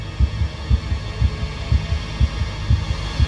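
A pounding heartbeat thumps in deep double beats, roughly two per second, steady and loud over a low background hum, with no voices.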